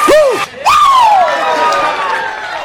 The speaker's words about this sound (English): Now give me two claps and a Ric Flair